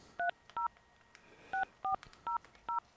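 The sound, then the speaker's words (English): Six touch-tone beeps as a phone number is dialed: two quick tones, a short pause, then four more at a steady pace. Each beep is clear and crisp, with no voices. “Did you dial all the numbers?”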